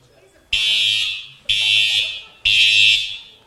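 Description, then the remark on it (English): A fire alarm, a false alarm set off by someone pulling it, blares in three loud, harsh electronic blasts, each lasting about a second, separated by brief pauses in a steady, insistent rhythm. “would you just make sure there's someone pulling the fire alarm and not an actual fire? That's false alarm.”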